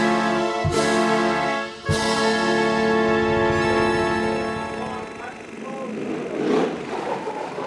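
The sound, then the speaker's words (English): A car engine roars loudly and steadily in a film car chase, with two sharp gear-shift jolts early on, then the revving turns rougher and noisier as the vehicle speeds along. “The car chases, the fights, the explosions and the characters, it's all there.”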